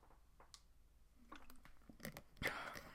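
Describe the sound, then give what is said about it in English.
Someone takes a quick sip of water: a few soft wet clicks and a gulp, quiet against a faint room hiss, with no talking. “Had to take a sip of water.”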